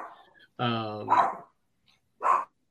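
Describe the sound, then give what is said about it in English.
A dog, Gabby, barking at people outside, lets out a drawn-out, throaty bark followed by two sharp, loud barks with short pauses between them; otherwise quiet. “Gabby, hold on. There's people outside. I'll take them. It's hard to dog all of a sudden.”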